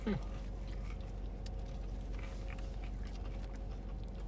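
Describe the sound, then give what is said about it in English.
Crunchy chewing of a crispy chicken sandwich with lettuce and tomato, a string of soft crackling bites over a steady background hum, with a brief hummed murmur at the very start. “There's some ASMR for you. Mmm. This is really good flavor.”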